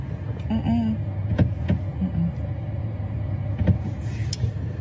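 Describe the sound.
A car's power window hums briefly as a woman winds it down over a low engine rumble, with a few clicks and muffled voices inside the vehicle.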